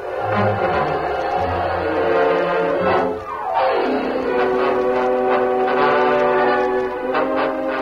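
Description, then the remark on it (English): A company train bound for Warren City from Omaha rolls along with a steady mechanical rumble while its horn sounds in long, bright tones, one blast sliding downward in pitch as it passes; no one speaks. “The following morning, the general headed east for Washington, and Greg took the company train for Warren City.”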